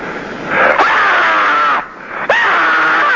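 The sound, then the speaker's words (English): A person screams twice in long, loud, strained bursts, the first held for over a second and the second cut off after a brief gap, with no talking. “Meanwhile, to add to your screamscape”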